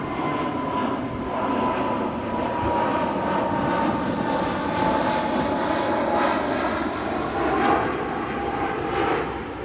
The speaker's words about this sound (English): That was a Delta plane. Every time a plane comes by, I'm gonna try to guess the plane from afar, and we'll see if I got it right. The airline, not the actual plane model.